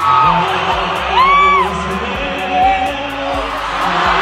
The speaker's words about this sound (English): Oh my gosh, the crowd quickly joined in on the serenade and cheered for the epic proposal that followed.